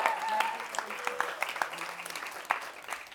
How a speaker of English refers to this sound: Can we give a round of applause to our Trove worship band?